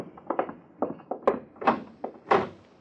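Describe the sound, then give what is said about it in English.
A shut door on the opposite wall of a room being opened: a string of dull wooden thunks and knocks in an uneven rhythm, building to a few louder, heavier bumps near the end. No one speaks. “Door on the opposite wall. Shut.”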